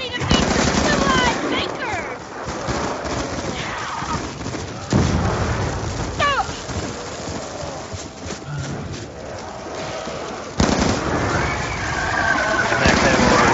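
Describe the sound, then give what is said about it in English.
Rapid video game gunfire rattles almost nonstop and loud, with heavier bursts near the start, middle and end, mixed with other busy game noise and faint voices. “All right, this thing looks like a good gun.”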